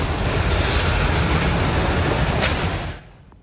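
A loud, continuous rumbling roar fills the air like a massive rush of earth and debris, holding steady for a few seconds before abruptly dropping away: a mudslide in Colombia as part of a mountain gives way and sweeps onto a busy highway, submerging multiple cars.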